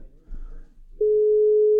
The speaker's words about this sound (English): Maybe he can't find his phone. See if he can pick it up.